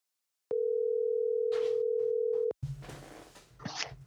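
A steady, loud telephone dial tone, placing a call to bring a guest onto a sports desk segment, hums for about two seconds, then cuts off abruptly and gives way to rough, noisy line hiss and clatter.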